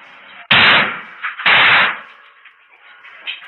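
Officers explosively breach the door to Paddock's adjoining hotel room: two loud, sharp blasts about a second apart, each followed by a rumbling decay, leaving a low hiss and faint debris noise afterward.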